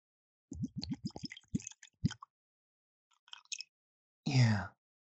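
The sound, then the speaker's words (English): Bushmills whiskey glugs out of a bottle into a glass in a quick, uneven run of gurgling pulses, followed by a few faint drips and a short louder burst at the end. “Let's get the little audio on pour. Hear it.”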